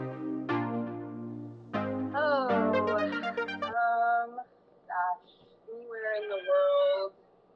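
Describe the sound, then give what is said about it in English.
A cat meows several times in a row, drawn-out and rising and falling in pitch. A low steady hum runs beneath the first few calls. “Oh, you got a kitty there.”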